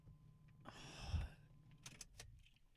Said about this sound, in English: I'm getting out of the car. All right, folks, we're moving. We're moving.